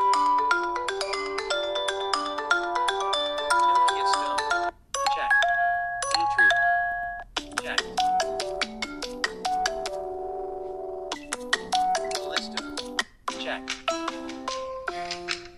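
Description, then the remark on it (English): Several electronic Nokia phone ringtones play one after another, bright synthetic melodies with short gaps between them, with no talking over them. “All right, so there you go, just some of the ringtones.”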